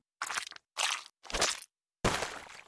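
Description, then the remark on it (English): Celery stalks snapped and twisted as bone-break foley: four loud, bursty crunching cracks with brief pauses between them, the last one longer and more grinding. No voices. “For bones breaking, just crack some celery.”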